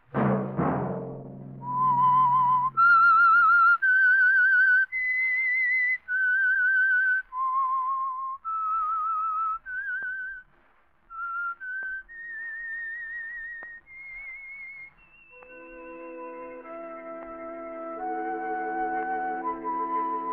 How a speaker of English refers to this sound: Let that whistle be your signal for the Signal Oil program, The Whistler, each Monday at 9.